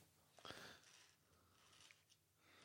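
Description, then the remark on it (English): A stiff Gerber Quadrant folding knife blade is pulled open with one sharp metallic snap, followed by a brief scraping hiss and a couple of faint clicks. The sounds are quiet, with no talking. “It is quite stiff, so it doesn't open up in your pocket. But if you just pull it, it will open up.”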